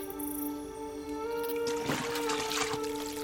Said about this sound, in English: Oh, I see what you're up to. It helps me too, you know, to just watch the water flow.